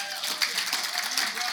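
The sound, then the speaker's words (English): A church audience claps steadily for a man coming up to share his testimony, a dense, bright wash of many overlapping hand claps with no clear individual beats, holding a fairly even loudness throughout. “As you're coming up, yeah, give this guy a big clap.”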